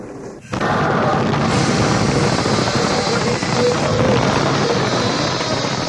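A train crash: after a brief quiet start, a sudden loud, dense roar of crashing and rumbling noise takes over and continues steadily to the end, with no voices.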